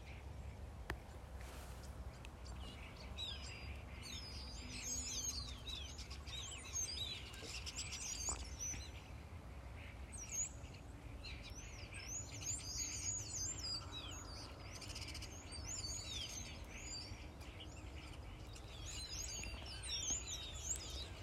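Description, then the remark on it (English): Many birds chirp and sing continuously, overlapping high twitters and trills over a steady low outdoor rumble, with no one speaking. “Let us just listen to the birds.”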